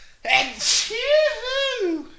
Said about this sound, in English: I think I have to sneeze. Go ahead.